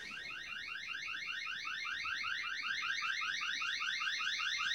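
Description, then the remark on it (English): A wake-up alarm blares with a rapid, steady stream of high electronic beeps, loud throughout with no pauses and no voices. “Oh, that is a wake up alarm.”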